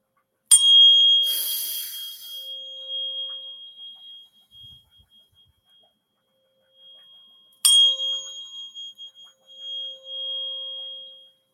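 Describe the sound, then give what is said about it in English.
Two bright metallic wind chime strikes, about seven seconds apart, each ringing out with sustained tonal shimmer that slowly decays. Clear, with no voices. “I also have wind chimes.”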